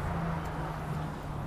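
A steady, continuous rumble of road traffic fills the background, with a low engine hum and broad wash of noise from cars and buses going by, no one speaking.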